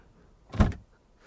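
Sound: door opening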